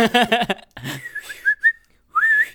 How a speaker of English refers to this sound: I guess Uber for horses is just you like whistling. You're just whistling and then a horse comes galloping.